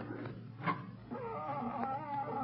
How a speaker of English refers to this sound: Lamont, that cat howling. She's frightening.